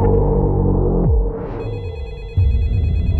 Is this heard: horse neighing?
no